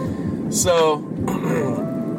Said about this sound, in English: Usually I'm driving in my car, that's why you hear some noise.